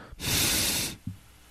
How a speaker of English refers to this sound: That's me breathing through my nose. I couldn't do that a couple of weeks ago.